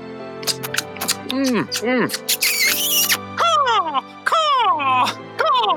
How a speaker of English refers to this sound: That's the eagle of our love soaring through the skies